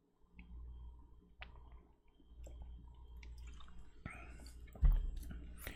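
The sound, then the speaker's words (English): Quiet sounds of someone drinking No Name Water from a bottle: soft wet gulps and sips with a few plastic clicks and squishes, ending in a louder thump, with no talking. “And I said, it's hard to drink water while I am speaking into a microphone.”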